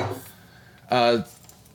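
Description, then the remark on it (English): A layered cocktail made with Grey Goose being tossed, poured into another vessel and back into the original to mix the ingredients: a single brief, loud splashing pour with a ringing, slightly shifting tone, following a moment of faint talking. “Basically, we're going to pour it into another vessel and then back into the original vessel to toss the ingredients together to kind of mix everything.”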